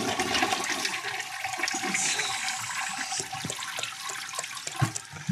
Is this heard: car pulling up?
no